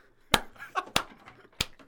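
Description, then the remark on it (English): Three sharp, loud slapping claps of thighs clapped together into a microphone land at a steady, unhurried pace, with faint murmuring noise in the gaps between them. “Thighs clapping in the mic.”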